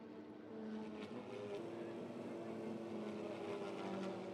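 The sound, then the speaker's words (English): A steady, droning engine roar of race cars on a circuit holds throughout, with sustained tonal hum and slight rises in pitch, as the race leader goes through turn seven toward corner eight with about three laps left. No speech. “All right, your race leader now going through turn seven, heading down towards corner eight.”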